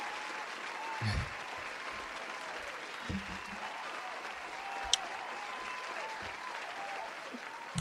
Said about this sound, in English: You know, it's really sad that none of the talk shows of today's era will ever have an applause that long in real life.